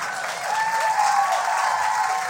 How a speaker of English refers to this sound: Didn't get as much applause as the other two things.